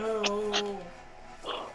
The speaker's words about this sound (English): Oh my god. Gesundheit.